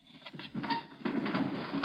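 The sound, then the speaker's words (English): A window of a farm shack, already open a couple of inches, scrapes and rattles as it is slid open in short, uneven pushes, a gritty sliding noise with no one speaking. “Let's try that window. It's open a couple inches.”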